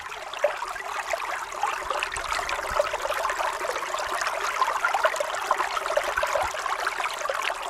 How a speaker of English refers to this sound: grab your jacket and head out to your nearby neighborhood stream or river. Observe the cloudy water carrying sediment. Can you hear the rocks tumbling beneath the surface and see the collapse of banks as water erodes or eats away at the land?